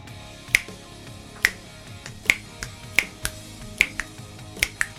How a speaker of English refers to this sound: I always thought this could have done with some finger snaps. The original mix has got it in.